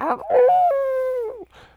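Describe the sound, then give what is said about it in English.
A person gives a mock wolf howl: a short rising yelp, then a long steady wavering tone that bends downward at the end, with a brief breathy sound after. “You make me wanna howl.”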